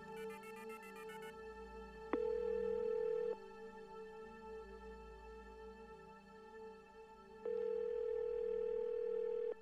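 A quick run of beeping dial tones as a phone number is redialed, followed by two long ringing tones with a pause between them, steady and fairly loud, with no talking.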